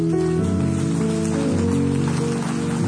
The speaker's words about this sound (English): Yeah, you can clap.